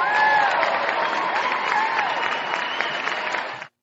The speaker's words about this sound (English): I'm sorry that she didn't really get to enjoy the fruits of her labor and insights, but she definitely deserves some applause for that.